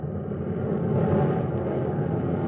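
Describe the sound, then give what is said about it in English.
A steady, heavy drone of many transport planes flying overhead around 1:30 a.m., returning after dropping paratroopers on Sicily: a broad low rumble that swells slightly in the middle as the planes pass, with no voices. “A great wave of planes, our planes, has just swept over us.”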